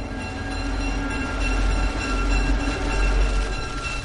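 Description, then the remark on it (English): A train rumbles steadily along the rails, a loud continuous low roar with a metallic hum and clatter that swells slightly midway, with no voices. “Be alert around trains and trams.”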